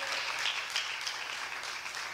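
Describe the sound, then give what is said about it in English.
A steady round of applause for the Lord from many hands, a dense, even crackle of clapping that holds at a constant moderate level throughout, with no voices. “would you give the Lord a round of applause?”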